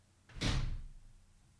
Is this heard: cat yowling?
no